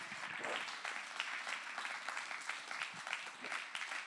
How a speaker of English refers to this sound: Can I have somebody clap your hands this morning for God's plan?